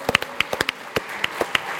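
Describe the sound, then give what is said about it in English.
Scattered audience applause for exhausted volunteers after a demonstration: a modest scatter of sharp, irregular hand claps with gaps between them, fairly light and with no one speaking. “So you can give them a round of applause.”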